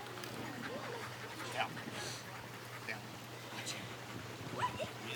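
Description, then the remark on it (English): A dog gives a few faint, scattered yips and whines over a steady low hum and muffled background voices. “Dude, being near that dog is scary.”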